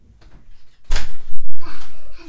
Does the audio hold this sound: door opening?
yes